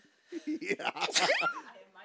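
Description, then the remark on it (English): A single sneeze: a few halting, breathy voiced catches build up before a sharp, hissing burst that trails off into a short falling vocal sound. “I have to sneeze.”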